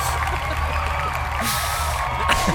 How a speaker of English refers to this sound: All of a sudden, I said it. An in-studio audience starts clapping. I don't know where they came from.